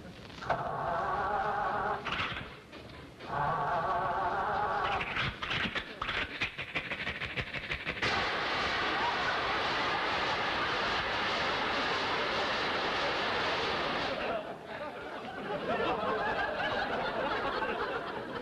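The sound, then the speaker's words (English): An old car engine sputters and coughs, wheezing in loud uneven bursts with rattling pops, then grinding on in a rough, noisy chug without ever catching and starting, as Rochester tries to start the car again. “Rochester, start it again, try it.”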